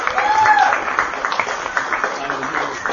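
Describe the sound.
A crowd of people claps steadily for a few seconds to thank a volunteer who coordinated the food. A dense patter of hands, scattered voices and a brief whistle rise over the applause near the start.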